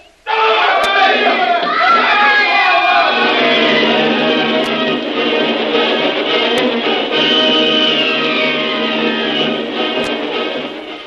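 A frail native rope bridge gives way as its ropes pull away from the rocks and its occupants fall 150 feet into swirling river waters; a crowd of natives bursts into loud, sustained screams of terror, many overlapping high-pitched voices wailing together for about ten seconds, with a rough rumbling clatter at the start.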